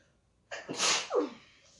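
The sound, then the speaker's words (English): A single loud sneeze with a sharp intake of breath followed by a forceful burst, then quiet. “Have to sneeze.”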